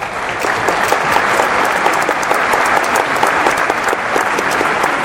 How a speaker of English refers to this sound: Let me see if I've got that applause I called for earlier in the show.